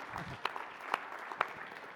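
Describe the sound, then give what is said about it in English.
An audience applauds with a dense wash of overlapping claps, steady and moderately loud, with a few sharper individual claps standing out at irregular moments. “You can clap.”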